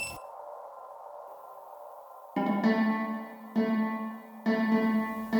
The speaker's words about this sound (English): I just wait for the beep and flip the meat.